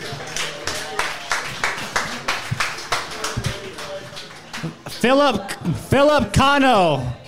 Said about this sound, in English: Jads, round of applause for these two.